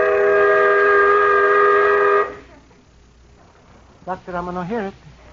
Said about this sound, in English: That whistle almost blew my brains out.